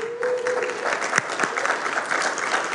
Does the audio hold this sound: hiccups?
no